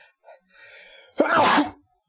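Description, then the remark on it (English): A single loud sneeze bursts out after a soft, breathy intake, a sharp explosive release that fades quickly into quiet. “Bless you.”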